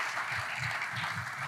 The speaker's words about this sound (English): And I'd love for you guys to give a huge applause